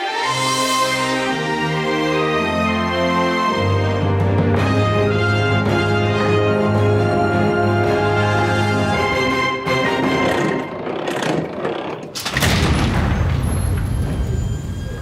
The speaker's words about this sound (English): That's an orchestral version of our Ralph Report theme song that created, and then the giant vault door opening. Really impressive.